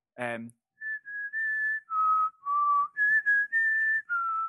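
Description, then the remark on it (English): A man whistles a familiar tune while coworkers work, a string of clear sustained notes stepping up and down in pitch, with a short voiced sound just before the melody begins. “And after about 10 minutes, he started whistling and he whistled.”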